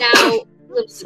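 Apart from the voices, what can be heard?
a person sneezing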